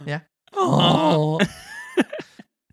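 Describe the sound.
A voice reading a story aloud imitates a donkey's bray, a loud, drawn-out groaning hee-haw lasting about a second with strained, wavering harmonics, bracketed by short vocal bursts before and after.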